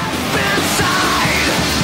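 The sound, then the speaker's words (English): A harsh, strained, angry scream rises over a song's dense, loud music, the raw yelling voice partly buried in a thick wall of sound for under two seconds. “That screaming, is that what you're talking about?”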